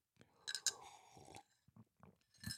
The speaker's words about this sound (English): Okay, two things. Peak positive emotions, one sip.